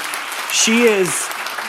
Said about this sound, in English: You can clap for that.